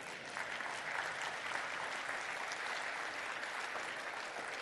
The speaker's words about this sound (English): You ought to be clapping and saying amen right now.